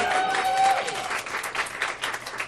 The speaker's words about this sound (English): I tricked you. I told you to clap for yourselves, but I'm taking it all.